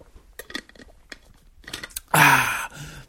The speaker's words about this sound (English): Just taking a refreshing sip of water.